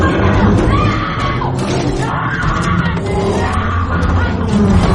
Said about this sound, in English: She screams again. Angle from living room as the bear picks Thorensen up again and shakes her like a rag doll.